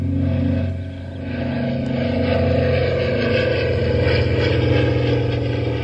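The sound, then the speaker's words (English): The propeller engine of a signal airplane drones steadily on a windless day, a loud, buzzing hum with strong low harmonics that holds nearly constant throughout, dipping only briefly near the start. No voices are heard. “I mean, there's the signal plane.”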